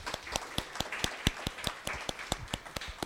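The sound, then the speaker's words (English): An audience applauds a speaker being thanked, a steady wash of clapping with sharp, evenly spaced claps standing out in a quick rhythm, moderately quiet and with no voices. “If you could give her a round of applause.”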